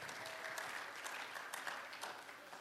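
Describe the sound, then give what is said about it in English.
During a church sermon, an audience claps hands unto God in a dense, steady burst of applause, many overlapping claps blending into a bright, continuous wash that stays fairly loud throughout. “Clap your hands unto God because he is a miracle working God.”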